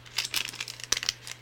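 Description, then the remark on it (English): A drink mix packet is torn open by hand without scissors, as it has no easy-tear notch, making a quick series of crinkly, crackling rips. The rips are fairly quiet, with a faint steady hum underneath and no talking. “I didn't bring a pair of scissors, and these don't have like an easy to tear thing on them.”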